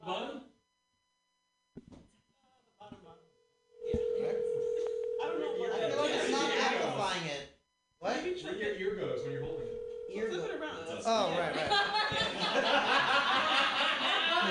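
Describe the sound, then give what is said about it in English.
Telephone dialing tones as a call is placed to Seth Rogen's phone number during the Mutiny Radio show: a steady phone tone holds for a few seconds, then returns briefly, both times under loud, overlapping voices and laughter. “Who's the one with Seth Rogen's phone number, all right?”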